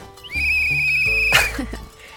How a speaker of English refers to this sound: Hey, is that a whistle in your pocket? Or are you just really happy to see me? It is a whistle, actually. Still the girl you met at camp. Please blow it. Please.